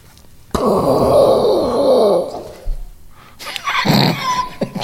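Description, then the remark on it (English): A person rumbles and moans in a long, loud, drawn-out vocal growl imitating thunder, followed by a shorter breathy rush of noise. No words are spoken. “Hang on, I gotta do the thunder noises.”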